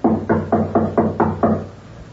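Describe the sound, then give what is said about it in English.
A rapid series of about seven firm knocks on a wooden door, evenly spaced, ending in a brief quiet. “Knock again.”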